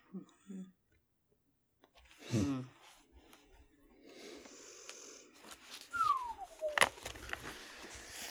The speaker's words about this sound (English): That whistle right there.